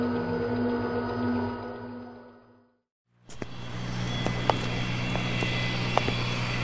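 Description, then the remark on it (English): A company jet airplane flying to Warsaw: its steady engine drone holds, fades out into a brief silence, then returns as a constant, fairly loud cabin-like rumble with a few faint clicks. “I'm glad we have the company jet available to us.”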